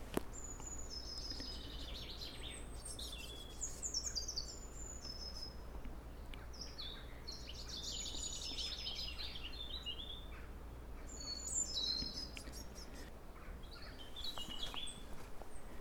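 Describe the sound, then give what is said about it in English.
A chiffchaff sings its repeated, see-sawing chirps in short bursts over a steady outdoor hiss of insects and other faint birds. “The chiff-chaffs are back with me.”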